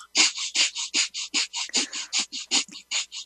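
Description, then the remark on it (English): Rapid, forceful yogic fire breathing by a man holding one nostril: about sixteen sharp, hissing breaths through the nose in quick, steady rhythm, loud, with no talking. “what he's doing is he's doing this fire breath.”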